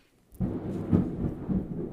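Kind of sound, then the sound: nature, thunder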